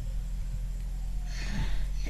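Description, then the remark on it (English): A single sneeze, a short breathy burst of hissing noise about halfway through, set over a steady low hum with no talking. “Thank you. Bless you.”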